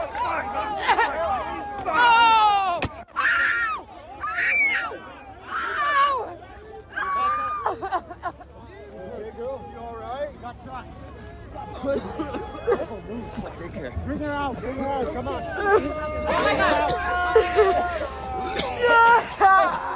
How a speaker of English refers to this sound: You can see her crying. You can hear the screams of anguish as a police officer discharged a smoke grenade